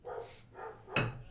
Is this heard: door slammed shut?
no